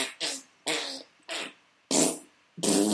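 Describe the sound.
A voice in a studio makes a string of about six sputtering, raspberry-like fart imitations with the mouth, each short and loud, spaced by brief pauses.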